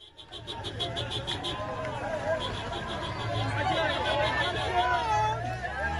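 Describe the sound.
A crowd shouts and cheers as vehicles carrying newly released hostages travel through the Rafah border crossing from Gaza to Egypt: a dense, steady hubbub of many voices, individual raised calls above the din, and a rapid high-pitched pulsing in the first few seconds.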